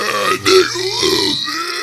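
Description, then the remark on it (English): A stifled, throaty burp gurgles out in a low grunt, held back and strained over a couple of seconds, with no talking. “No, a burp got stuck there.”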